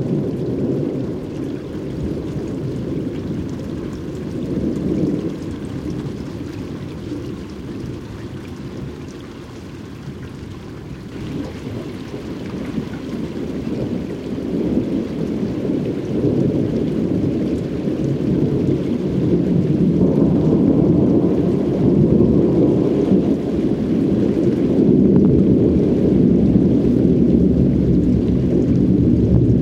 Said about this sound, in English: Almost no snow here in New England, but lots of rain, thunder, and lightning, which is definitely unseasonal. Producer Mark Seth Lender recorded this out-of-season thunderstorm as it passed over Long Island Sound.